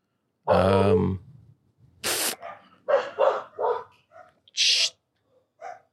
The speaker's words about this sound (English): Hold up. Let me get these dogs to shut up.